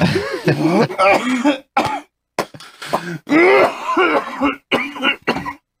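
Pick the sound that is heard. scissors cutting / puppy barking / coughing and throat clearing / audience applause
coughing and throat clearing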